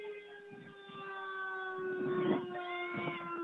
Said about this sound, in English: And that's the fire department whistle, just in case you hear that.